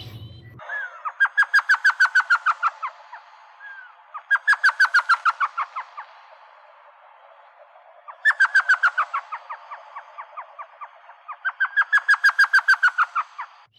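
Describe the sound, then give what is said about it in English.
Four bursts of rapid, high chattering notes from an elf owl, each a quick descending laugh-like series of yips, loud with short pauses between, no talking. “It's a really interesting laughing call that's actually pretty loud for a bird so small. And I do have a recording of that call.”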